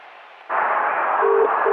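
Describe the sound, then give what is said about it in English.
Over a hissy, narrow telephone-line background, the ringing tone of an outgoing call to a pub, made from a Bradford City football match, starts: two short, steady low-pitched tone bursts in quick succession, clear, with no talking. “Right, I'm ringing now.”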